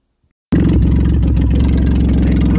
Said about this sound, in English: Can't hear that. Maybe you can hear my voice or not. But that is a demolition derby car. We're going to try and do a podcast while I'm driving it, but that's a little bit dumb.